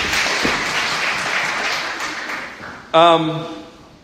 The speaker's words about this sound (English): So everybody give her a round of applause. That's a good guess.